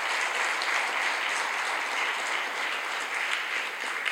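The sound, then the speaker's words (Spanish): A crowd applauds loudly and steadily, a dense wash of many hands clapping together for the full four seconds without a break or any voices. “Si lo quieren, dar un aplauso fuerte, Señor.”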